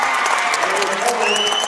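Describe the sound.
Steady, dense applause from a basketball crowd after Cardinals player Ellie Foley's two steals in a row and layup, loud and continuous throughout, with some cheering and crowd voices mixed in.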